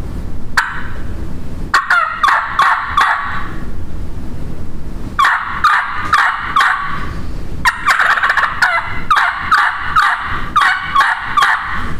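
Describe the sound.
Imitated wild turkey gobbler yelping and clucking: loud bursts of raspy yelps in quick rhythmic runs, with three clusters separated by short pauses. No one speaks.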